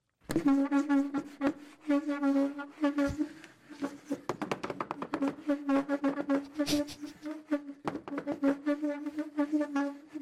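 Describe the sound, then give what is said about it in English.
A voice imitates a creaking chair: a long, steady, buzzy squeak held almost without a break, with sharp clicks and rattles mixed in, loud. “This is what the chair sounds like.”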